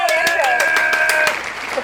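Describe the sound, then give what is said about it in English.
Crowd applause with steady, rapid clapping and a sustained cheering or whooping tone riding over it, loud, then thinning out toward the end. “Okay, shut up, crowd.”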